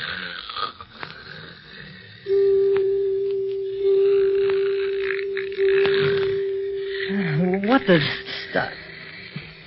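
A man snores with a long, steady, whistling drone that ends in a wavering, gurgling flutter, loud against a hissy background with a few rough snorts before it.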